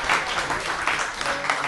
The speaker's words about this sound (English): Give me a round of applause for everyone at the Scum and Villainy Cantina